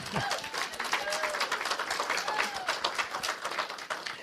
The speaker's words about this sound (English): Let us clap the hands for our Master.